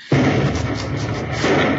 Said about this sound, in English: Well, I'll feel better when I hear that explosion. You'll hear it.